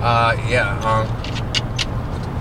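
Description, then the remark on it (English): A steady low rumble of a car cabin on the move runs throughout, with a voice sounding briefly at the start and a few light rattling clicks afterward. “This is the first time I've ever done a podcast in a car with a microphone.”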